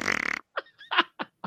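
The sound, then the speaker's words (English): A buzzy, sputtering fart sound effect rattles for a moment, then a handful of short, separate puffs follow, with no talking. “I have a library, a sound library of hundreds of different farts.”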